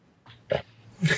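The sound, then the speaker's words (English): A short run of throaty burps: two brief grunting bursts, then a louder, rougher belch with a low croak at the end. No talking. “This is, like I said, this must be the main burp status radio.”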